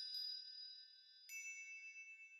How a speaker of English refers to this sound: And you hear that little tinkling of bells beside you.